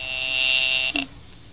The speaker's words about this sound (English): I will ring the service department. I am ringing.